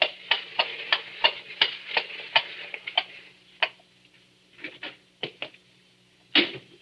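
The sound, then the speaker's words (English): A horse-drawn four-wheeler carriage draws up before a door in a gas-lit street late on a summer night: steady, sharp hoof clops at a quick even pace, then slowing into a few scattered, separated knocks as it halts, with a faint low rumble beneath and no voices. “And late one summer night, when the shutters were long closed on those windows, a four-wheeler drew up before the door in the gas-lit street.”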